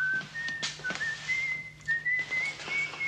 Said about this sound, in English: Quit whistling, Fizzy. Makes me edgy.